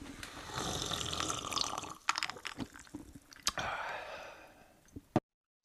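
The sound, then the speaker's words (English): Someone slurps a sip of hot cocoa: a long, airy, wet slurping sound broken by small liquid clicks and gulps, ending abruptly with a swallow and then silence. No one speaks. “Let me sip my cocoa.”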